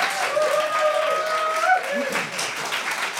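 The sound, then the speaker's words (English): Steady audience applause at a debate, clapping in support of the Knights of the Old Republican Party negating the moot: a dense wash of clapping with a few voices and cheers mixed in, lasting a few seconds without a break. “And those in support of the Knights of the Old Republican Party negating the moot, applaud now.”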